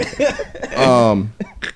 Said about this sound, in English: You good? You keep coughing, my nigga.